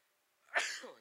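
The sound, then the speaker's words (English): A single forceful sneeze bursts out after a quiet moment, sharp at the start and then trailing off with a breathy fade. “Excuse me, I'm about to sneeze.”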